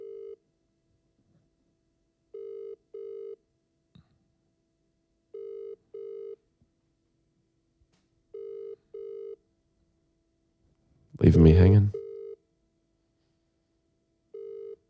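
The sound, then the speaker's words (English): A telephone ringback tone on an outgoing call repeats in steady double pulses, a low, even burr-burr every few seconds, with a man briefly speaking over one ring before it carries on unanswered. “I'll just give him a buzz and see what he's doing.”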